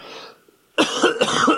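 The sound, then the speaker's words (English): A person clears their throat loudly, a rough, guttural rasp with a couple of rhythmic pulses after a faint breathy pause. “Yeah, clear your throat.”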